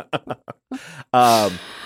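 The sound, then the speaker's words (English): A person lets out a breathy yawn, a drawn-out voiced sigh that slides downward in pitch, preceded by a few brief vocal sounds. “I'm about to yawn because you said the word yawn, and that's how suggestible I am.”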